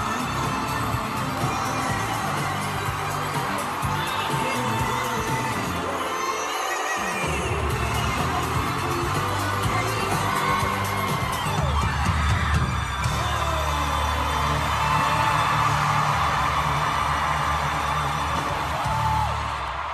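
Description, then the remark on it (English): A concert crowd cheers and shouts continuously for the full twenty seconds, with whoops, yells and scattered bangs in a loud, dense roar that never lets up, as drag queens are brought on stage. “Crowd's going wild.”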